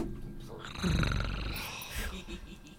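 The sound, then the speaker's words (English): A person imitates a cat's purr with a low, rumbling rattle, swelling after a short pause and fading over a couple of seconds, with faint background noise. “Yeah, you can purr really nice. Again, please. Do it again.”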